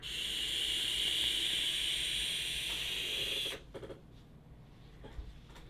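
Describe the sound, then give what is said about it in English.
A steady, smooth airy whoosh of air being drawn through a vape tank set at 50 watts, lasting about three and a half seconds with a bright hissing tone and no turbulence, then cutting off to near quiet with a few faint clicks. “A little loud, super good, nice and swooshy, not turbulent at all.”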